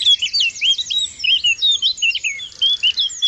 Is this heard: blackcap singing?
yes